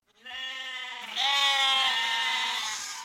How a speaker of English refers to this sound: Would you young sheep just shut up? Oh, that's much better.